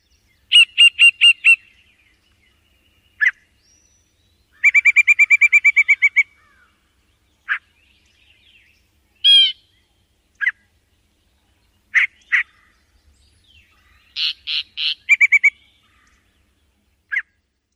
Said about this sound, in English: chats sing a series of widely spaced croaks, whistles, and short repeated phrases, very unlike a typical warbler song.